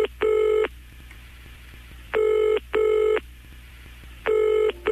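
Electronic telephone keypad tones sound in bursts as button 5 is pressed to reach the Ian Lee answer phone: one, then a close pair, then one more, each a steady harmonic beep, clear against a quiet low hum with no speech.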